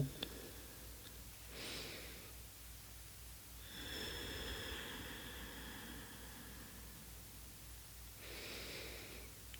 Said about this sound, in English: Place your hand on your chest. You can place your hand on your belly too, if you're not driving. Take a couple of deep breaths in and out.